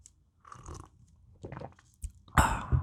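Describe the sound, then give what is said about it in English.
Someone takes noisy slurping sips of hot tea, a few wet, hissy bursts that build to a louder, longer slurp near the end, with no one talking. “That was me sipping my tea.”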